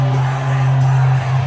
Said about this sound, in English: But let's go ahead and listen in to the crowd just going wild for Donald Trump right here. Let's play it.